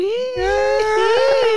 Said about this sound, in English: I don't know why I was screaming like that.